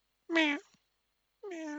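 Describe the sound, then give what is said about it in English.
Someone imitates a kitten's mew twice, two short, high, whiny calls separated by a brief pause, otherwise quiet. “Are they just crying or are they just making cute little... That little mew noise little continuously.”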